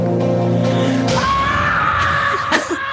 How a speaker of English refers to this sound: Primal scream, yo. That was so good.